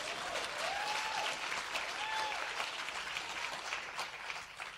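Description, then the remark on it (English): Steady, loud applause from an audience fills the whole clip, a dense wash of many hands clapping at once, with a few high whistles or cheers rising briefly above it. “If you're going to clap, make sure it's a good one.”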